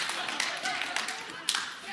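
An audience claps together in a dense, steady patter of many hands lasting the full two seconds, with a few sharper individual claps standing out, including one near the end.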